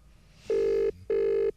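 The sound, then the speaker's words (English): Two steady electronic ringback tones, each lasting about half a second with a short pause between, like an outgoing phone call ringing while waiting for someone to pick up. “Calling Beck Hewitt now.”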